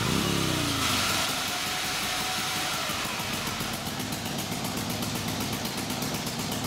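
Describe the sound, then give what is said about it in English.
A motorcycle engine kicks into life with a quick rising rev, then settles into a loud, steady, throbbing idle that rumbles on without pause. No voices are heard. “the whole island's got a thing about zooming around on two wheels”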